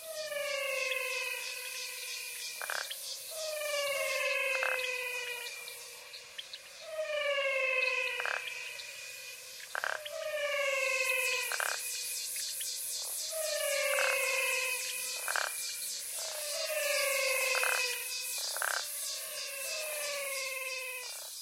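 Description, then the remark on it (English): A chorus of frogs in the Pantanal sings in loud, overlapping calls, each a rich, falling, almost whistled note repeating every couple of seconds, over a steady high buzz of insects. No one speaks. “The Singing Frogs of the Pantanal”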